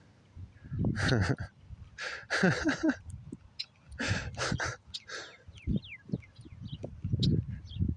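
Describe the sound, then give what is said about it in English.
Birds flying right in front of the listener chirp in quick, irregular bursts, with short sweeping calls scattered among louder rustling, breathy noises and low thumps; no one speaks. “These birds just like fly right in front of me. What's up? How are you? You want to talk too?”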